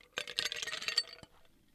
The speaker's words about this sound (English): So in your mixing glass, let's put some ice in there. Okay. Hold on a second. Let me get to reach over and do all that. Here we go. There's a little bit of ice in there.